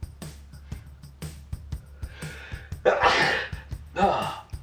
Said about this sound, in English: Hold on 1 second. I'm about to sneeze.